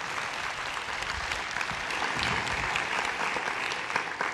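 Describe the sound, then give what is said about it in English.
A crowd claps steadily in a dense, continuous patter of many hands, holding an even loudness for several seconds without any voices rising above it. “You can applaud now.”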